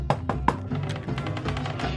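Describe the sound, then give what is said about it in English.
Three quick, firm knocks on the door of Steve Borden's office, followed by a muffled, rhythmic rumble of loud rock music blaring from within that continues steadily in the background. “When I knocked on the door to Steve Borden's office, I received no reply.”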